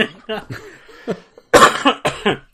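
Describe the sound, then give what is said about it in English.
Two harsh coughs burst out loudly near the end from a person who has been sick all week, following a few softer voiced sounds like murmured talk or a stifled laugh. “Now you're making me cough.”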